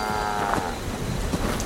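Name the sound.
cow mooing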